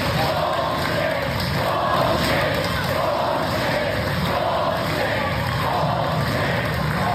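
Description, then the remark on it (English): A large crowd roars and cheers continuously for several seconds, a loud, dense wall of many voices that stays steady without a pause. “The crowd's reaction when he said BS, right, was this.”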